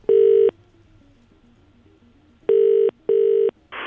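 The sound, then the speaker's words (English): Three loud, steady electronic phone tones as a caller rings a cleaning service, the first alone and the last two close together, with faint melodic beeps in the gap and a short burst of noise at the end. “he's ringing the cleaners because he's had an awful accident in his gaff.”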